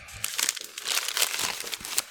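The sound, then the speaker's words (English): A paper bag from a bottle shop crinkles and rustles as a bottle of beer, a Blue Moon Belgian White style wheat ale, is pulled out, a dense run of crisp crackles lasting about two seconds with no voices. “Just buy me something, and I'm going to take it out of the paper bag and see what it is now.”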